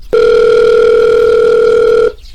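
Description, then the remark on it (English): A single steady electronic ring tone sounds for about two seconds on a call placed from a phone booth, loud and even, then cuts off. No one speaks. “Well, Sarah doesn't seem to be picking up here.”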